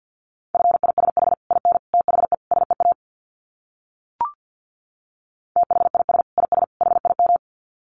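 Rapid Morse code sent at 50 words per minute: a steady mid-pitched tone keyed into quick dits and dahs, in two bursts separated by a pause with a single brief click between them.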